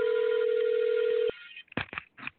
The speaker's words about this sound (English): Yeah, this is unfortunate that this is happening. Because we're on a roll. Okay, you want to answer your phone and hang up here? Okay.